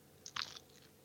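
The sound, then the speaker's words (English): A crisp crunch of someone biting into a fried chicken drumstick, Harold's fried chicken, a Chicago favorite, followed by a few softer chewing sounds, brief and alone with no talking. “I'm a dark meat kind of guy, so I'm going to pull off this drumstick. Okay. Don't want it. I hope you guys can hear it.”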